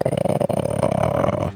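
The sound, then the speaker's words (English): A person growls in imitation, voicing the character Figgy growling at a line of dolls, a low, rough rumbling held for about a second and a half, fairly loud, with no other talking underneath. “Figgy just growls at the line of dolls over here.”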